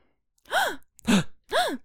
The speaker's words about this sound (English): My sound effects that I want are a gasp.